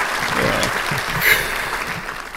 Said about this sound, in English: Props to Elster. Let's have some applause in here. Let's do it.